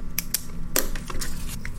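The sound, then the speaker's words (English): Quiet handling of two small paper slips: a few short scratchy taps and rustles as a pen writes the letters A and D on them and the paper is moved, scattered irregularly over a faint steady hum with no talking. “I'm going to put two pieces of paper. One piece of paper is A. I write A. Other piece of paper, I write D.”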